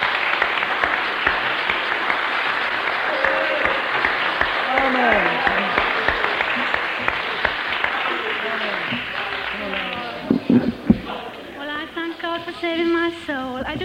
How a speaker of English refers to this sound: Come on, girls. Give them a clap and make them feel at home.